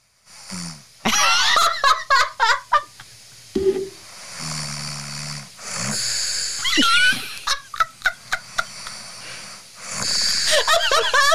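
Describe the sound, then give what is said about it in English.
A recording of a person snoring loudly, with rattling, gurgling snorts in rapid bursts, broken by a low droning breath and some wheezy whistles. No one speaks over it. “I can't say I've ever noticed you snore. Well, apparently I do. listen to this.”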